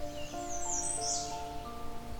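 A warbler sings a brief, high, thin phrase of rapid notes, soft, over a steady low background hum with no voices.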